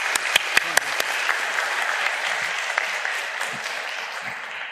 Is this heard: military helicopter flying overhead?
no